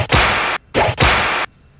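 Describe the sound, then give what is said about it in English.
Two loud whip-crack sound effects in quick succession, each a harsh burst of noisy snap that lingers for a moment before cutting off abruptly, with no one speaking. “She's our whip girl.”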